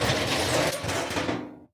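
A wooden drawer slides open with a steady scraping rumble and small clattering rattles, running for under two seconds before stopping abruptly. No one speaks.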